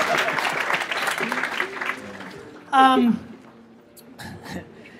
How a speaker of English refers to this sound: All right, let's clap it up for these fuckers.